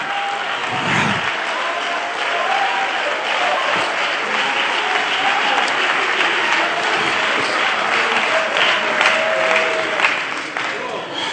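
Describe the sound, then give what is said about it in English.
An audience in a church service claps their hands together to invite Jesus in, a steady, dense wash of applause that stays loud and continuous for about eleven seconds, with a few brief voices faintly audible beneath it. “Please be seated for a moment, and when you get down, clap your hands again and just invite him into your place.”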